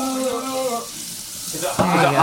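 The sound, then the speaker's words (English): Steady hiss of fully hot water spraying from a kitchen faucet set to a single stream for more pressure, turning harsher and louder after a sudden burst near the end, with a brief tonal voice-like sound at the start. “Click the faucet thing.”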